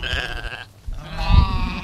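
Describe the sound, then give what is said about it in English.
Two sheep bleat in quick succession, the first a wavering, nasal call and the second a deeper, louder one, with no talking. “Sheep. The Navajo economy was truly based on our livestock.”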